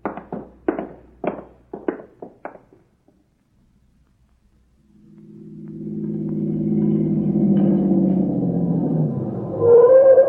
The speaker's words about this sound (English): I heard your car come up the road and I thought